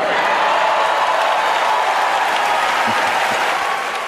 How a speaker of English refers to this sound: And they clap.